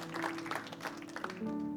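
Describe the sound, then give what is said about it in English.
A crowd claps together in a dense, steady patter of many hands, with faint sustained tones underneath and no voices standing out. “And if you wonder why we're clapping, it's not because we scored a point, right?”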